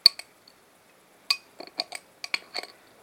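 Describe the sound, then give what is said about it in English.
Small glass clinks and scraping taps, irregular, as a metal bottle cap that fell into a glass of a lively, foaming drink is fished out, with short quiet pauses between bursts and no talking. “That's so lively my bottle cap fell in the glass. I've got to fish this bottle cap out now.”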